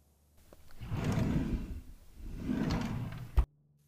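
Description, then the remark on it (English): A kitchen drawer to the left of the refrigerator slides open with two long, rumbling glides, ending in a sharp knock as it stops. Fairly quiet, with no voices. “as she neared the drawer.”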